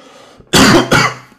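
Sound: cough and throat clearing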